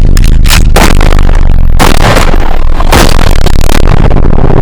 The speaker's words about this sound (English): Dad, look out! The bus crashed.